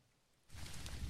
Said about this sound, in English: it's raining.